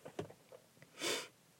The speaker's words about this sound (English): I think I went the whole episode without sniffling, so that's good. I did it towards the end to annoy you.